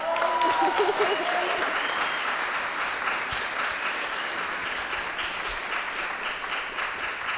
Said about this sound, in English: The coalition successfully won the passage of the Massachusetts Domestic Worker Bill of Rights in 2014. Can I get an applause for that?